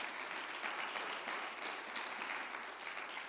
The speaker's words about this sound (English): Give the Lord a hand clap of praise right there.